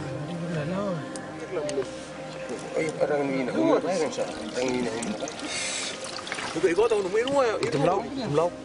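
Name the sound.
water being poured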